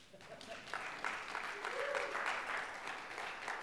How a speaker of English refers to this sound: There should be applause now.